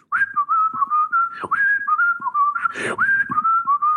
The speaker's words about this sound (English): I am going to whistle my way into chambers, and when I have a decision, I will return.